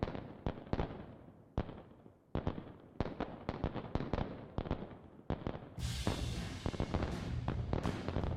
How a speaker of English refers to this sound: This album starts and ends with fireworks.